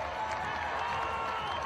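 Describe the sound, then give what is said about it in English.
A steady wash of basketball crowd noise at a Missouri Southern game, a large audience packing both sections behind the benches, murmuring and chattering at an even, fairly loud level throughout, with no single voice standing out. “It's been an interesting, it's a big crowd here. Both sections behind the benches are packed.”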